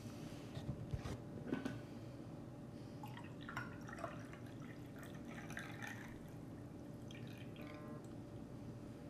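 Coffee pours into a cup in a soft, steady trickle with scattered drips and splashes, fairly quiet, over a faint constant background hum.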